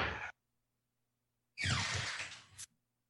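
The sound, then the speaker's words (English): A door opens: a short burst of noise, a pause, then a longer scraping, rushing sweep that ends with a sharp knock. No one speaks. “It sounded like somebody just came into his room and took him away.”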